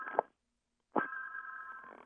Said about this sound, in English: Sorry about that ringing in the background. It's another phone.